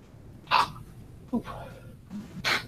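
Two sharp sneezes, from allergy season, burst out about two seconds apart, with a softer breathy sound in between and quiet background noise underneath.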